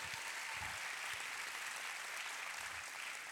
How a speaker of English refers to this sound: Somebody give Jesus a hand clap right there.